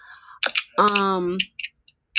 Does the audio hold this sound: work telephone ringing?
no